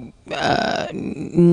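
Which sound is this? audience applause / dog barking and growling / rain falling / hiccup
hiccup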